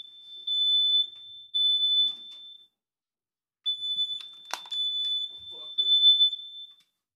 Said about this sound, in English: All right, folks, well, the fire alarm just went off, but it wouldn't be another podcast without some sort of issue, technical difficulty.